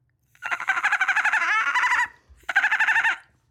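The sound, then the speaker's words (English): A person imitates a dolphin with a high, rapidly pulsing chatter: a long wavering burst followed by a shorter one after a brief pause, fairly loud and with no other talking. “But first, can I do my dolphin impression again?”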